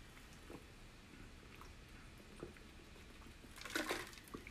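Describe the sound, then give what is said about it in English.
Someone drinks water, with faint sips and a brief, louder slurp-and-swallow near the end, against a quiet background with no talking. “Water time.”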